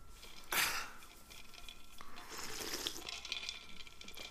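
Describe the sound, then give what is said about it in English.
A short clink at the start, then soft liquid sounds as someone takes a sip of a drink; quiet, with no talking. “I got to sip in there.”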